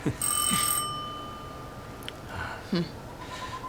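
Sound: doorbell ringing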